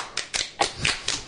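A short round of hand claps: about half a dozen sharp, crisp slaps at an uneven pace, moderately loud, with no voices.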